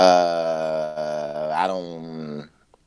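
A man lets out one long, loud yell at his dog, heard through the thin walls of a building in Brooklyn, New York, holding a steady pitch with a brief waver partway through before cutting off after about two and a half seconds.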